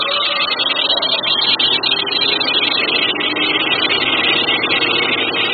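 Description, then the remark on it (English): A loud, steady engine rumble of an enormous truck at the intersection of Green and Hazlitt runs continuously throughout, unbroken, like it is idling or crawling in traffic, with no voices present. “And then at the intersection of Green and Hazlitt, an enormous truck got between us and our quarry.”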